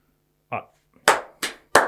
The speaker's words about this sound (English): Knows when to clap.